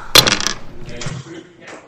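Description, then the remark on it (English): A twenty-sided die hits a table with a sharp clack, then rattles and tumbles briefly before settling on a 1, with a softer click or two as it comes to rest. Faint voices murmur in the background. “Is that a 1 or a 20?”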